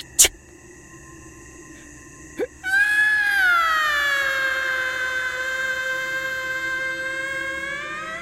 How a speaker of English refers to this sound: Silence, goat!